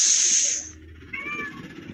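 A cat gives a single short meow, fairly clear, right after a brief burst of hissy, noisy sound, with no one talking.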